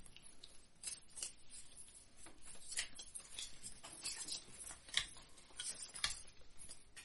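A deck of cards for a deck-building game being shuffled, a steady run of quick, crisp flicks and soft riffling clicks over about seven seconds, fairly quiet, with no one talking.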